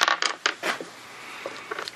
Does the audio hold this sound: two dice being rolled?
yes